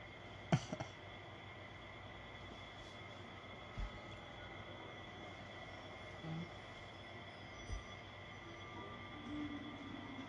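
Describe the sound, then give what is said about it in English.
Steady rumble of a train rolling through a station, with a sharp metallic clank near the start and a few softer knocks and faint wheel squeals over the continuous drone. “Is this the train station from Harry Potter?”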